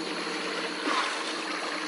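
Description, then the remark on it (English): A steady, even wash of water around a boat drifting with the current after its engines are cut, shortly before sunrise, a soft continuous hiss with no motor hum and no voices. “Go ahead and cut the engines. We'll drift with the current for a while.”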